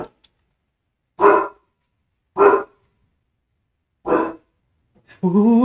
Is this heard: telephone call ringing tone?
no